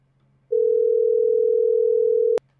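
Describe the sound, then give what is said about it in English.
A steady telephone dial tone during a test call hums at a constant pitch for nearly two seconds, then cuts off abruptly with a sharp click; a faint low hum lingers underneath throughout. “I should probably put the phone number on the screen, though.”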